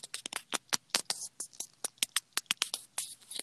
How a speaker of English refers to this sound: I hear pages turning. What? Oh, is that the mic? I thought those were like laminated pages turning. Oh, no, this is a mic. I'm cleaning up the dust.